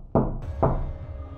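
knocking on a door

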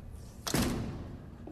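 door opening

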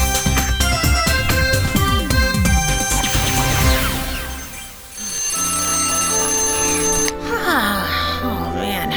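alarm clock ringing

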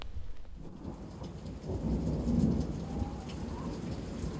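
rain

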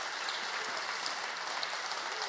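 audience round of applause

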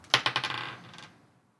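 dice being rolled

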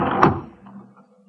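door being shut

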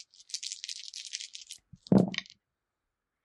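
dice rolling

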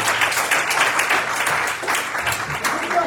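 audience clapping hands

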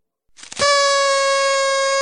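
air horn sound effect

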